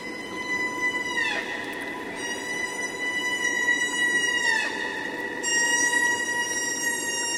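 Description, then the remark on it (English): Humpback whales sing in the Pacific off Alaska in a chorus of long, sustained tonal moans layered over one another, with a couple of sliding downward swoops, steady and fairly loud, with no voices. “Lisa Walker recorded this chorus of humpback whales in the Pacific off Alaska.”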